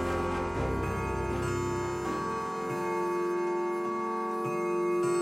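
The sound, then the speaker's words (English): A clock ticks at a slow, steady pace as it ticks over to midnight, while a rich, ringing chime tone hums and sustains underneath, moderately loud, with no voices. “As you hook the last piece into your igniter, your tea igniter, the clock ticks over to midnight, and it is now Christmas Eve.”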